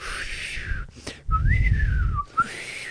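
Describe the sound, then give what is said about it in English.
A person imitates the thin, airy whistling noise coming from the nose of a man whose nose was cut off. The high tone rises and dips over a few seconds in short breathy bursts, fairly loud, with no talking. “You know, when his dad's like, when you have to eat family dinner and you just like hate your family and like his dad, there's just this whistling noise coming out of his dad's nose.”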